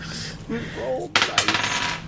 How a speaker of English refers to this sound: Yeah, roll a dice.